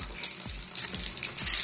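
Steady shower water runs and splashes, a continuous bright hiss with a few low thumps beneath it, fairly loud with no voices.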